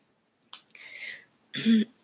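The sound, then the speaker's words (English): A person clears their throat during a tarot card reading: a breathy, raspy scrape followed after a short pause by a brief voiced grunt. No speech is heard. “Had to clear my throat.”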